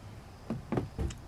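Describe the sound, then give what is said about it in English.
Three firm knocks on a door, evenly spaced, with quiet background and no voices. “Open the door, man.”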